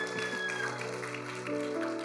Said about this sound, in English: Come on, give Jesus a round of applause.